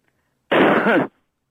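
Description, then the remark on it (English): One loud cough, a single harsh burst lasting about half a second, with quiet before and after and no talking. “Okay, if you're one of them spies and stuff, then cough once.”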